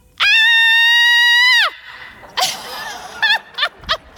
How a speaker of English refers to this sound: all of the frustration, the anger, everything that we have been feeling for the past 14 months with one loud scream, okay? Here we go. On the count of three, all campuses, everybody watching online, here we go. One big loud voice. One, two, three.